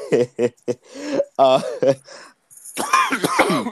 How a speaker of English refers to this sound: You made me cough, and I don't appreciate that. My throat's a little dry.